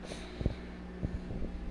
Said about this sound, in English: I don't know if you can hear the microwave, but it's quite loud.